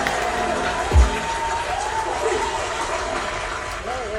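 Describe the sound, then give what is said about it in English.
A crowd cheers and applauds in a steady, dense wash of noise, with a brief low thump early on and scattered voices shouting through the din. “Give my man a round of applause, man.”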